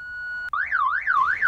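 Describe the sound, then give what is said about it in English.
A car alarm blares: a steady high tone cuts off, then a loud warbling wail sweeps up and down in a repeating cycle, with no voices. “after all, when we hear a car alarm, what do we all do?”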